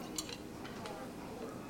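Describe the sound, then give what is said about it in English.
A few quick, light metallic clinks as cutlery is set down on a table, fairly soft, over a steady low background murmur. “Here's your cutlery.”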